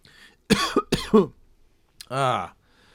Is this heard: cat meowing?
no